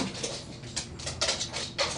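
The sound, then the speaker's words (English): A dog whines in a string of short, restless bursts, fairly quiet, wanting attention to be let outside to pee, with no one speaking over it. “The dog wants your attention really bad.”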